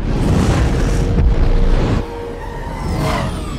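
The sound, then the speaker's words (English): Loud, rumbling explosions in a superhero movie fill the first two seconds with a dense low roar, then drop to a quieter churning aftermath with faint whooshing debris sounds. “Things were exploding, people were yelling.”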